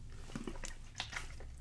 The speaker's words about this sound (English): I'll take a drink of water, give me 1 second.